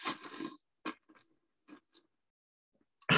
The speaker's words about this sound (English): Just get that nasty slurping sounds all out of the way.